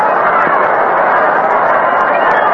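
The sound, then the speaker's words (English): A large baseball stadium crowd of probably over 40,000 at the Polo Grounds at night fills the air with a steady, loud roar of countless blended voices that never breaks or swells, with no single speaker standing out. “Beautiful crowd tonight in the Polo Grounds. Big crowd, probably over 40,000.”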